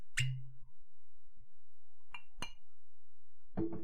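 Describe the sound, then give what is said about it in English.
A few sharp glassy clinks and knocks, spaced unevenly over a few seconds with quiet between them, like a bottle tapping a glass while whisky is topped off. No talking. “But I'm going to go ahead and top off my glass.”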